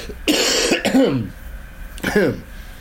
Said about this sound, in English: We played Last Man Standing at the end of the show, and it's an interesting one, and you'll get to listen to it in full at the end of this mini, after … plugs and potentially a lot of coughing.